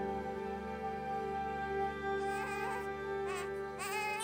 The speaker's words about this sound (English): A newborn cry echoes from this small shelter. The cry of a newborn baby, is there any sound like it? Helpless, vulnerable baby.